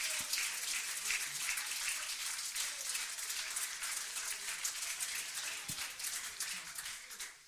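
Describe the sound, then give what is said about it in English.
An audience claps their hands to the Lord in thanks, a dense, steady wash of many overlapping claps that holds at an even loudness for several seconds, with no voices. “Let's clap our hands to the Lord and thank Him.”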